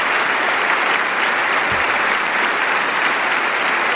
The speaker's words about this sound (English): Oh, how nice of everybody to start clapping. That's nice.